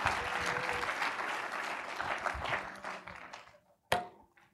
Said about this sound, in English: Well, give the Lord Jesus a great hand clap.